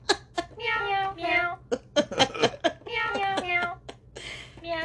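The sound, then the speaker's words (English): A cat meows repeatedly in a low, deep, drawn-out voice, several rising and falling calls in quick succession, fairly loud over a faint steady hum. “That's a deep kitty.”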